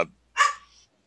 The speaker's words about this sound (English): Sorry, my dog's barking.